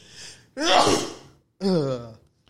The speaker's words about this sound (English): I'm about to sneeze, so.